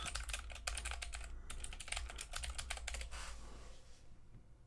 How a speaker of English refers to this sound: Yeah, no, I know everybody loves my clicky clacky keyboard.